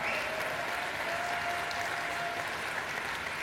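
Steady audience applause for a band at Tuesday Night Live fills the whole stretch, a dense wash of many hands clapping at an even, sustained level with no talking over it.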